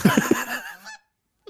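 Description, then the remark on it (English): A loud goose honk sound effect played by pressing a button: a few rapid nasal honks in quick succession lasting about a second, then silence apart from a tiny click at the end. “Oh, there's the goose.”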